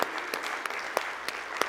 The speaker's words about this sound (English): give him a hand clap if you wouldn't mind